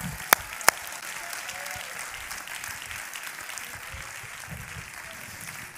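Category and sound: crowd, audience clapping hands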